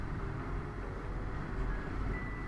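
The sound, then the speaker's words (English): A steady, continuous low rumble of a train passing by, with a faint high squeal riding over the dense, unbroken roar and no talking. “I'll probably edit these train passings by, unless you like them.”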